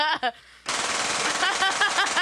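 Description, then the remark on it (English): A brief voice is cut off by a loud, sustained burst of automatic gunfire, shots rattling in a rapid, continuous stream for over a second and a half. “I'm spraying shit, bro.”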